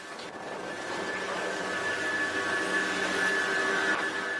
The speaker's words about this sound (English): That's a chairlift. Chairlift. Mm. Not a healthy sounding chairlift. That must be down the road at the neighbor's place because nothing sounds like that here.